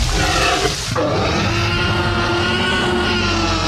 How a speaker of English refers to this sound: So if I was dropping sounds in here, I'd say, here's the Godzilla roar that we all know.